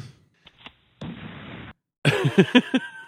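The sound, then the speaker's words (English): A cheap-sounding gunshot sound effect: two soft pops, a flat burst of hissing noise, then a quick string of five or six harsh, ringing blasts. No one speaks. “I just have a shot 10 sound effect. That isn't a very good one.”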